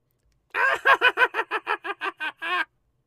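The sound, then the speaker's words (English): A crow caws in a quick run of about ten harsh, rhythmic calls lasting two seconds, loud, with no other sounds around it. “From the crow.”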